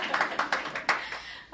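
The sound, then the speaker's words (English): A short burst of audience applause at a seminar's last slot of the last day: a smattering of irregular, overlapping hand claps at moderate volume, tapering off after about a second and a half. “I think you deserve a round of applause for the last seminar slot of the last day.”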